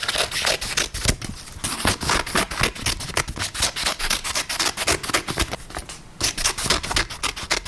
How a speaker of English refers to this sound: It's like Christmas time all over again, isn't it? Yeah, cutting paper. Sounds like a dog sniffing as well.